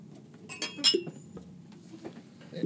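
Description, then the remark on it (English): Several drinking glasses clink together in a toast in a quick cluster of bright, ringing taps, followed by a couple of softer, scattered clinks against a low background murmur. “Grab your glasses. Raise them high and hold them, boys.”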